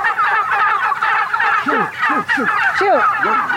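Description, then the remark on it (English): A flock of heritage breed wild turkeys on a pasture gobbling together in a dense, continuous chorus, with several birds letting out distinct rising-and-falling gobbles over the steady din of the crowd. “then we visit the laying hens, the geese, and the heritage breed wild turkeys, all pecking freely around the pasture.”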